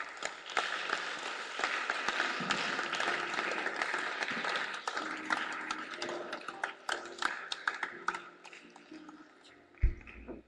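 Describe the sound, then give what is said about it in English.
A church audience claps together during prayer in a dense, steady patter of many hands that gradually thins out toward the end, followed by a single low thump. “I show you a clapping.”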